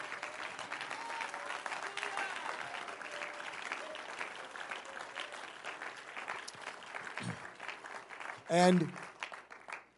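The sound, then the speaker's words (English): A large audience claps steadily in sustained applause of thanksgiving, with a brief louder burst of cheering or a shout near the end before it begins to fade. “Listen, I don't know if Bishop and Sister Bishop are watching, but let's make them hear an applause of thanksgiving for them, wherever they are.”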